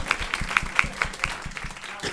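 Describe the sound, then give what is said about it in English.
Steady, evenly spaced hand claps, about nine in a row, moderately loud, like a lone person applauding with a quick, regular rhythm and no talking. “I'm going to give that one an applause.”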